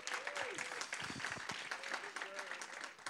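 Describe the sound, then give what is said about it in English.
A crowd applauds steadily for the seniors who have spoken so far, dense clapping filling the whole stretch at an even volume, with a few faint voices or whoops rising above it. “And before I get started, let's give a round of applause for all the seniors who have spoken thus far.”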